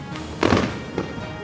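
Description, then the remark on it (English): A sharp explosive boom bursts out, a sonic boom from a money machine being struck with great force, followed a moment later by a smaller, softer second blast, with no voices heard. “Do Nothing Man Roundhouse is the Fed head money machine with such force that it creates a sonic boom, deflating the currency and exploding the dick and or labia of every Fed representative in the room.”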